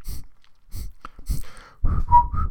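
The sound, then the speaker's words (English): A few breathy, hissing puffs, then three short whistled notes, one slightly higher and steadier in the middle, with a low rumble underneath. “I have to make a wee whistle.”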